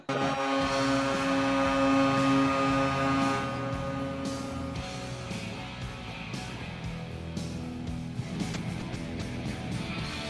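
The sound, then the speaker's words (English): A goal horn marking a goal for the home team blares with a loud, steady, low droning tone for about three seconds, then gives way to a noisy crowd roar with music playing underneath. “First off, I hate fucking horns like that, by the way.”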